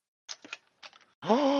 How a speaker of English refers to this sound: Everyone shock and amazement and gasp.